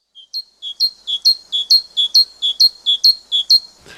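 A great tit sings its see-saw song alone, a high two-note phrase repeated about eight times in a steady, ringing rhythm, growing slightly louder before ending with a brief rustle.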